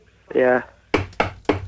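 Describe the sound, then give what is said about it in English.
A brief voiced sound, then three loud knocks on a door in a steady rhythm, each a sharp thud with a short ring, demonstrating an Amazon-style knock. “Right, this is a Amazon knock. Are you ready?”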